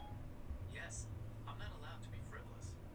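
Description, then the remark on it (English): A smartphone's Siri voice assistant speaks a short phrase in a male voice, thin and fairly quiet, over a steady low rumble of background noise, in Tamarindo. “My phone just said, I'm not allowed yes, to be I'm not allowed Siri.”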